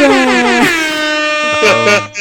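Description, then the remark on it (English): Loud, blaring Future Shock air horn blasts: a long sustained honk that shifts pitch, followed by a couple of shorter stabbed bursts near the end, prominent with no one talking. “rare future shock air horns.”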